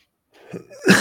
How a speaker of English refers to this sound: She made a cough. Amanda Lemos.